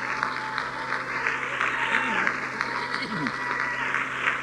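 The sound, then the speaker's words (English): A large audience claps their hands in a dense, sustained wash of applause, with some voices faintly rising underneath. “We will not stop clapping. We will not stop reaching for people. We're not going to sit down until the king comes. We are not going to stop this until the king comes. Clap your hands again.”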